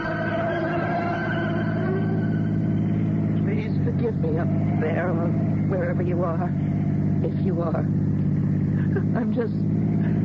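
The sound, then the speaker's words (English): A car engine drones steadily and loudly throughout, a constant low rumble of a car driving too fast at night on a mountain road, with a voice talking over it through the second half. “I don't even know what I'm doing in the car, hurtling through the night too fast for this mountain road.”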